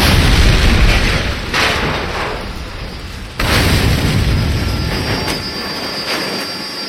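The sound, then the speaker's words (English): A tractor-trailer truck explodes at a mill as a loud, deep roaring blast that keeps rumbling with dense low-end noise, briefly dropping out partway through before the roar surges back and slowly fades. “There was an explosion at the mill.”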